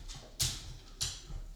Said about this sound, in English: And you can hear my dog's feet clopping in the back.